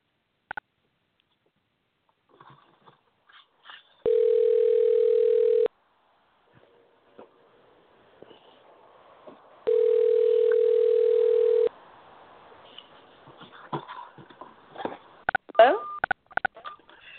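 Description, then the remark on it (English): A telephone line tone sounds twice, each a steady two-second hum separated by a pause, followed by soft clicks and faint rustling as a call to a second phone number connects. “I have 2 phone numbers for her, so I'm going to go ahead and try her other phone number here.”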